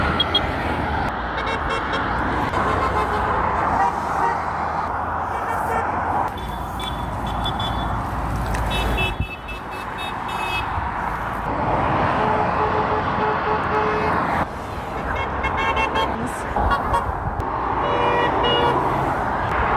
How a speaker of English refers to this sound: I never really appreciated the sheer variety of car horns that there are out there. It's a little compilation.